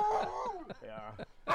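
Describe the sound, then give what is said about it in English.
A dog lets out a short run of drawn-out, groaning barks and whines, several vocal bursts in quick succession, fairly loud, ending on a sharper yelp. “has something to say about it.”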